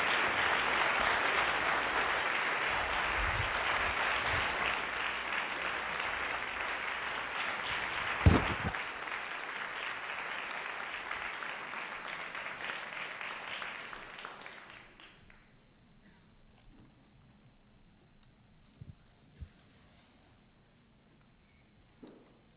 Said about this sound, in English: Thank you. And I just want to invite one more round of applause for Bob Rosenkranz for making this possible.